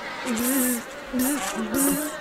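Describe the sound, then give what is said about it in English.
A person hums a nasal, droning buzz in three wavering bursts, imitating a swarm of bees, with short pauses between each burst. “That doesn't even sound like a bee.”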